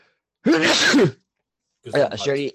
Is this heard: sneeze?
yes